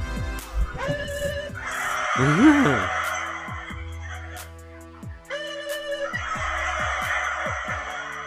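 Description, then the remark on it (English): A man standing in front of a large flock of turkeys gives a single gobbling call, answered each time by a loud, dense burst of gobbling from the flock, happening twice in a row. “So that was a guy standing in front of a shit ton of turkeys. And every time he'd gobble, the rest of them would gobble right along with him.”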